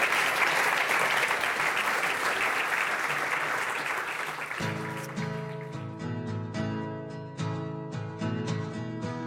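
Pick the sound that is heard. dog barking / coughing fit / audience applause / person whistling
audience applause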